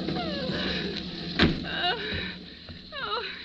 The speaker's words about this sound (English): Let me in, please. I'm wet to the skin. I'm going to unlock the door